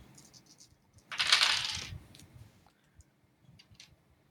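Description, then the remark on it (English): Dice, with another die added, are rolled to hit in unarmed combat, clattering across a hard tabletop in one bright, rattling burst lasting under a second, followed by a few scattered light clicks and taps as they settle, fairly quiet. “Okay, I get to add another dice to this.”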